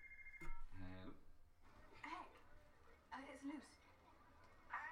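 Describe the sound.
A brief electronic ring from the speaker's phone sounds at the very start, a steady tone then a short burst, before people start talking over quiet background noise.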